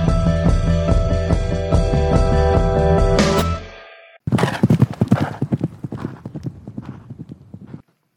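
A steady, droning tonal sound fills the first few seconds, then horse hooves clip-clop in a quick, fairly loud rhythm for about four seconds before stopping.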